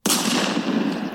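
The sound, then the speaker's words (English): A loud gunshot sound effect bursts in abruptly, its harsh, noisy blast sustaining at full strength for about a second without fading, heard alone with no voices. “Jesse just killed with himself. The gunshot. With the gunshot.”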